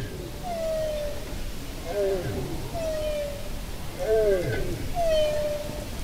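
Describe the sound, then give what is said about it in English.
A bowhead whale, recorded underwater by the Norwegian Polar Institute, calls in a series of five or so short, moaning tonal cries, some gliding downward, rising clearly above a steady rushing background of ocean noise. “This is a bowhead whale, recorded by the Norwegian Polar Institute.”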